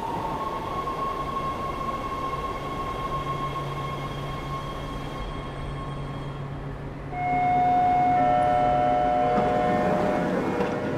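Steady rumble and rattle of a moving subway train from inside the car, with a tonal whine; about midway the noise swells louder as a high electric squeal and brake tones rise.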